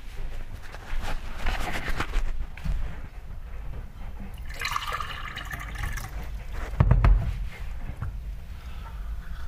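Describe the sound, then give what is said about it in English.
Someone drinking water, with sloshing, dribbling liquid and a few soft gulps over a low, steady rumble, plus a brief louder splash near the end. No one speaks. “Drink of water.”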